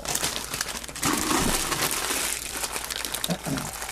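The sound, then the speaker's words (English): Wrapping paper crinkles and rustles continuously, a steady run of crisp crackles and crumpling noises with a few louder bursts, as it is gathered up by hand. “I'll take the wrapping paper. Separate, because I'm going to give that to the ferrets.”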